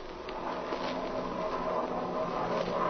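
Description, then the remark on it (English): A steady, rough airplane engine drones without a break, its broad rumbling roar swelling slightly louder over the few seconds as the plane comes in fast to land. No voices are heard. “Isn't that a ship? Do you hear it, Speed?”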